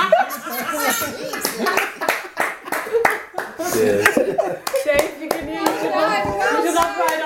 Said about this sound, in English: Because I love all the cheering at the end of this eulogy. And there was a pigeon cheering in the background as well.